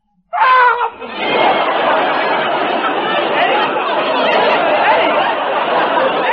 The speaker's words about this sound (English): Well, why do I ask? You just screamed. You went, bow! Well, that... I do that every half hour.